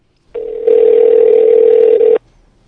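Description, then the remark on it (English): A steady telephone dial tone, for a call to the National Federation of the Blind, hums loud for almost two seconds, stepping up in volume shortly after it starts, then cutting off abruptly. No voices accompany it. “Call her. Let's call her on the phone.”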